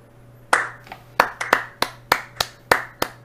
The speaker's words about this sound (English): A quick round of applause